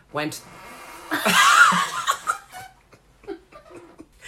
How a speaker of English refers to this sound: Sorry, it's the chair against the mirror. Sorry, that was really funny. It really looked like your hip was making that noise.